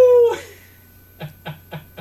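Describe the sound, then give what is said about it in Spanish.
A voice imitates a howling dog: a short, high sustained howl that quickly breaks off, followed by four evenly spaced, clipped yelps at a steady rhythm, moderately loud. “¿Aúllan los perros? ¿Cómo hacen?”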